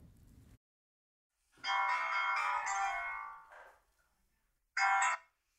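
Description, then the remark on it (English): A phone rings on the line of an outgoing call to a found adoptee: a long electronic ring of about two seconds, a pause, then the start of a second ring, clear and fairly loud with no one talking. “But since Melissa knew her, they picked up the phone.”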